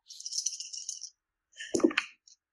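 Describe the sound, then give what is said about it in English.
Four dice rattle briskly in a cupped hand for about a second, then clatter onto a hard table with a few quick knocks before settling, all landing blank. Fairly quiet, with no voices. “Oh, I meant just roll one dice and see what roll one, not 4.”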